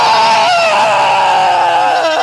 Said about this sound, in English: Holy crap, where are all these goats coming from?